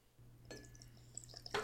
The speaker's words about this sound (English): So it's supposed to be like one part gin to 2 to 3 parts Moxie. Yeah, I'm just pouring the whole thing of gin in there.